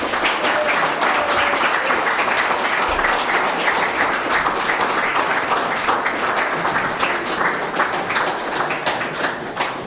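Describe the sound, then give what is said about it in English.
An audience claps steadily in a sustained round of applause at an evening event, thanking a visiting Minecraft education speaker from Darren Park Primary School in Wales; dense overlapping hand claps form a loud, even wash of sound that holds for the full ten seconds. “And give a big round of applause and thanks to him for journeying here all the way from Darren Park Primary School in Wales.”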